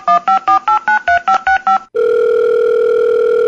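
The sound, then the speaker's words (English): A quick run of about nine beeping keypad dialing tones as someone calls a coach's private phone number, then a loud, steady electronic telephone tone that holds unbroken to the end, with no voices. “Let's give him a call.”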